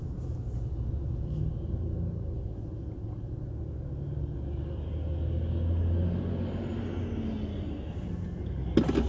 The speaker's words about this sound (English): Livestock trucks carrying these tortured ass animals to their demise. They're coming in here. Their little eyes and nose trying to peer out.